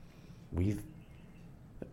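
A single brief bird chirp at 9 o'clock at night breaks a quiet night-time background, short, followed by a faint tick a moment later.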